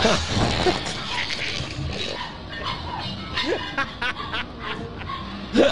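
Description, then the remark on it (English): A person makes yelping, bark-like noises in imitation of a dog, a few short sharp bursts spread over several seconds against a noisy, busy background. “Are you a dog barking?”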